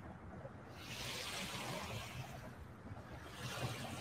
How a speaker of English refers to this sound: We could probably just do a show and listen to the waves. They're so relaxing.